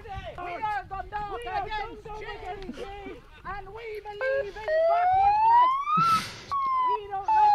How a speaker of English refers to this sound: Why does the siren kill me so much every time?